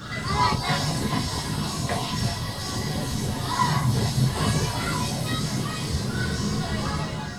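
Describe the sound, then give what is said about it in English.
Steady amusement arcade din with slot and fruit machines: a dense wash of crowd hubbub and machine noise at an even, moderate loudness, with children's shouts and squeals mixed faintly into the babble throughout. “The noise level didn't really come across, but there's kids screaming. I mean, they're having a lovely time.”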